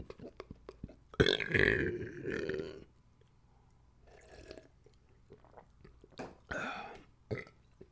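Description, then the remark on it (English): Someone takes a quick sip of water: a loud, gurgling slurp lasting over a second, then a pause and a few shorter, softer swallowing and breathing sounds. “Quick sip of water, balls.”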